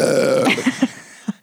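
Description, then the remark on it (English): A drawn-out burp with a low, buzzy rumble that breaks into a few short, croaky pulses before trailing off. No one speaks. “Can I have some of your Dr. Zevia to get my own burps going?”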